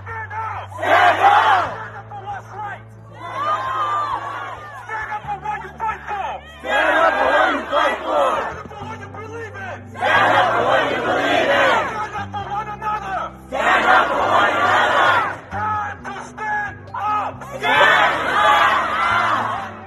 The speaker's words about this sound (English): And everybody stands up. I need everybody to yell, stand up! Stand up! Stand up!